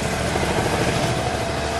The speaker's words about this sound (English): We're standing beside these hammering roadworks